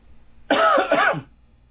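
A single harsh, raspy, lingering cough bursts out, lasting under a second, with a throaty, phlegmy edge before trailing into quiet.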